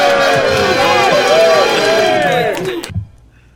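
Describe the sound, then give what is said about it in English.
A large crowd cheers and whoops loudly in the Cirque du Soleil comedy sketch, the mob internship program, many voices rising and falling together in a dense roar for about three seconds before it cuts off abruptly. “That cheering is from the Cirque du Soleil sketch, the mob, what's it called?”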